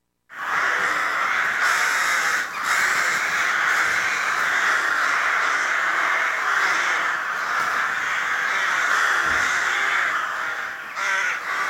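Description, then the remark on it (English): Ravens croaking and calling steadily and loudly for the whole stretch, several birds overlapping into a dense, continuous chorus with no pauses and no voices. “And here once again, because I love them, are the Ravens.”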